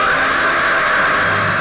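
A loud, sustained scream from the trailer for the horror film Scream, Blackula, Scream holds steady for about a second and a half, harsh and slightly muffled, with no talking around it.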